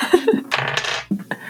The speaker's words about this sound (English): Do I roll two dice? You roll two dice.